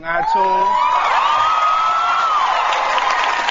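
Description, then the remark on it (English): A large audience bursts into loud, sustained applause and cheering, with shrill whoops and whistles riding over the dense clapping for the whole stretch. “Do we have to applaud every sentence?”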